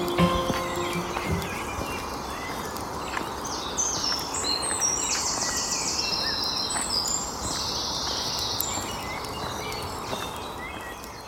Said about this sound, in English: So the birds are so amazing this morning, I thought you might appreciate just listening to them instead of me for once.